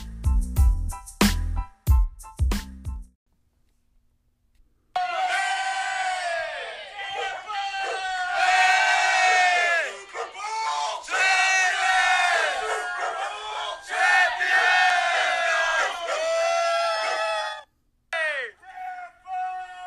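man screaming in celebration

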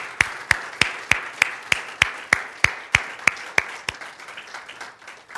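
audience hand clapping

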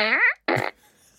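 fart noise

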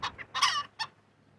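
chickens clucking

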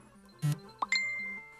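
phone beeping

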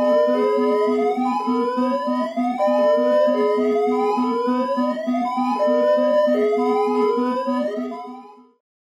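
siren sound effect

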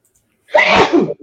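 sneeze

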